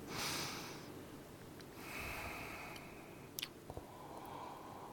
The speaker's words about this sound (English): …'s doing the serious swishing. He's breathing in. He's getting the aroma, the bouquet.